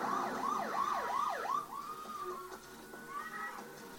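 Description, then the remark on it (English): A police siren wails in quick rising-and-falling yelps as cars full of FBI agents drive up, then shifts into slower, steadier tones, fairly loud against a faint background, with no one speaking. “Ah, cool cars just driving up. Full of FBI agents.”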